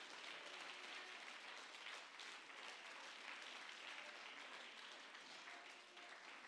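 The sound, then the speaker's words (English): A church audience claps steadily for several seconds to praise God, a dense, sustained wash of many hands applauding together at an even, fairly loud level with no voices standing out. “Would you clap your hands and would you magnify God for a moment?”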